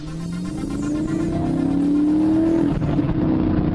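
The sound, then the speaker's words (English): A car engine revs hard as the car, its brake lines cut, speeds towards a lake at Glastonbury, its pitch climbing steadily for a few seconds before a sudden shift and a continued loud roar. “But the schemes of the aliens' earthly agents seem set to bring their cause to a brutal end as the car hurtles towards the lake with its brake lines cut.”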